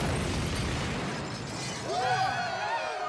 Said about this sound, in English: Classic stuff. There's an explosion, and then it's like this IRA terrorist bombing happened.